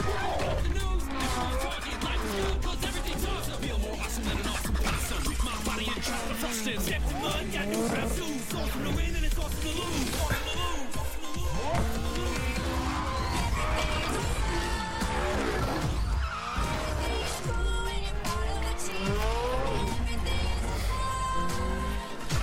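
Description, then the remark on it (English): Loud, continuous racing car engines revving and roaring, with repeated crashes and smashing impacts as the cars plough through Lego brick structures in a racing video game's Lego expansion, all in a dense, busy mix. “With real cars, trashing Lego. Lego cars, trashing real things.”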